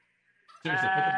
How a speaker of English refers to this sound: Of course, it's a turkey. Yeah, it's a turkey.